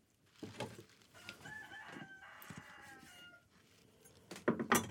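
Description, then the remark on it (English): A rooster crows once in a long, drawn-out call, ringing over faint background noise, with sharp clattering kitchen sounds just before and after. “That rooster always has something to say.”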